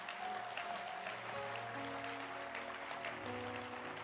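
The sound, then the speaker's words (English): An audience claps their hands in a steady, dense wash of applause that lasts throughout, with sustained organ-like musical notes holding underneath and no one speaking; they clap for everyone at an International Saturday service. “And I want to ask you to clap your hands for everyone.”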